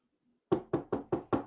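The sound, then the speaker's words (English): Five firm knocks on a door in a steady, evenly spaced rhythm, fairly loud, following a brief moment of near silence with no voices. “Why you keep on knocking at my door?”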